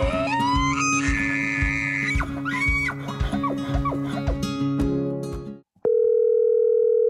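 A dense, layered stretch of tonal sounds with rising, whinny-like calls cuts out abruptly, then a loud, steady telephone dial tone of an outgoing call hums on a single low pitch until the end.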